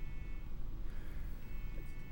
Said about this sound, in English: You hear that? Yeah, someone's car alarm. That's outside? Okay. Or no, stop. Someone's honking.